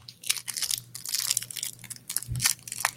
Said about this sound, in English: I'm like over here munching now.